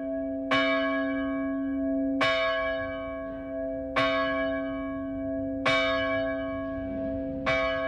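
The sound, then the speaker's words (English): A church bell, recast in 1940 and formerly the bell of Michael's and John's Church, tolls five times at a slow, steady pace. Each heavy strike rings out into a sustained, shimmering hum that carries into the next, with no voices. “And then it was the bell of Michael's and John's Church until the church was deconsecrated in 1990.”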